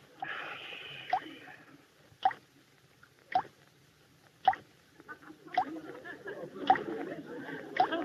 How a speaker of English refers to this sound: Oh, no. The shower is dripping. Yep, sure is. Somebody should get up and fix it.